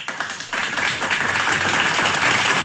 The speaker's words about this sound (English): Yes, and this is like another couple that deserves an applause.